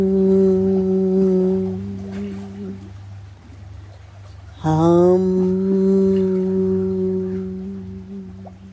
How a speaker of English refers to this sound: Hum.